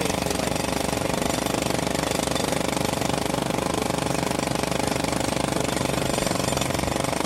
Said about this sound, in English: There was a jackhammer going on. I couldn't hear you.